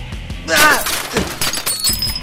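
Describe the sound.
A heavy crash as a person is thrown through a glass patio door, with a loud burst of shattering glass followed by tinkling shards and scattered thuds, while a voice murmurs underneath.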